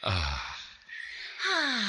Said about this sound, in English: So I'm still arching my back and breathing. I know. Doesn't it feel so good? And you're like connected to your body more.